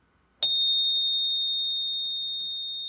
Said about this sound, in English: That is the Spur Cycle Bell. That was beautiful. Terrible. Oh, it's beautiful. It's a beautiful sound. It's a beautiful design.